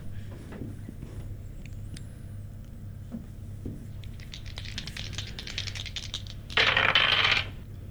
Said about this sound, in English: Oh, sorry, no, I got a 52, but I rolled the wrong dice, sorry.